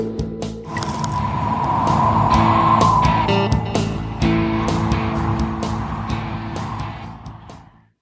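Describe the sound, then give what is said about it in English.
Cold winter wind howls steadily for several seconds, a whistling mid-pitched whine rising and falling over a deep rumbling roar, with sharp gusty crackles throughout before it fades out at the end. “Like hearing that wind, yeah. It's like I turned around to see if a door was open.”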